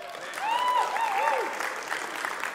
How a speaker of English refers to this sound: So welcome, welcome, online people. Give them a clap.